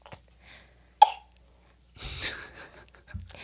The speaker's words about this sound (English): Oh, sorry, everybody. It's okay, bud. This is a lingering cough that he has. Poor guy.